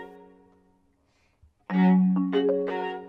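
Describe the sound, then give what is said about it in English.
A parking brake warning chime for the new Lincoln Aviator, played by Detroit Symphony Orchestra members on orchestral instruments: a faint sustained tone, then a loud cluster of rich, ringing notes stepping upward in quick succession, no voices. “Here's Symphony members recording a chime if you left the parking brake on.”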